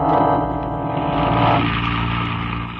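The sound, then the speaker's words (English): A car engine hums steadily with a dense, continuous drone and shifting harmonics as the car is driven down Clay Street. No one speaks. “He wheeled the car down Clay Street, and we followed.”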